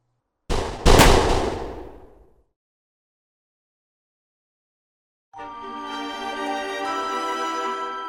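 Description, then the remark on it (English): A short, loud burst of gunfire, two sharp cracks close together with a booming, reverberant tail. Silence follows, then sustained music comes in. “The last thing I hear is a hail of gunfire.”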